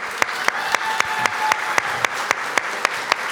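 An audience applauds a school social worker steadily, a dense wash of clapping with a few sharp, evenly spaced claps standing out in a regular rhythm, sustained at an even level throughout with no voices.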